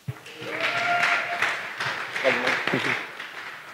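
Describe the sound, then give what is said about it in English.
A church audience at Love City claps steadily for a few seconds as a speaker is called up to preach, a broad wash of applause with scattered voices and a cheer or two rising over it, moderately loud. “Go ahead and clap for him.”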